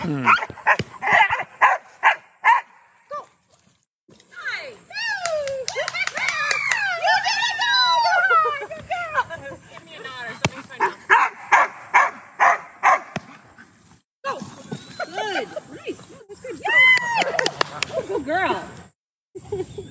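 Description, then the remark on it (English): A female dog barks and yips excitedly in rapid bursts, loud, with high whining, squealing cries in between and a few voices talking alongside, during bite work training. “Sound like chickens.”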